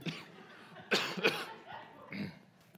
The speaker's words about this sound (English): I just drank water down the wrong pipe.